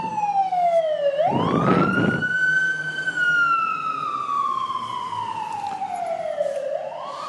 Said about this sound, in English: There's a fire truck going past.